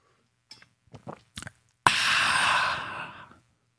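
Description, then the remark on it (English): Someone sips coffee in the morning: a few short, soft slurping noises, then a sudden long, breathy rush of air that fades out over about a second and a half. No talking. “Hold on. This feels like the sip of the day.”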